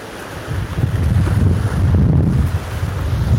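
Ocean waves wash onto a beach in a steady, low roar, mixed with heavy wind buffeting that keeps the sound rumbling and continuous for the whole stretch, with no voices.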